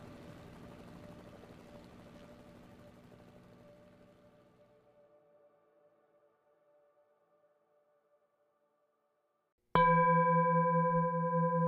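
A low, muffled motor rumble with a steady humming tone, the motor carrying two girls to their next destination, slowly fades to near silence over several seconds, then a loud sustained tonal drone starts abruptly near the end.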